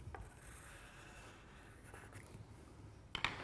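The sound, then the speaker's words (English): Soft scratching of a white pencil moving across paper in short strokes as the edge of a snake drawing is put in, with a slightly sharper scrape near the end and no voices. “and now I will make it look as though the light is coming from this direction, so shadows will be off to this side, and using a white pencil, get in the edge of our snake.”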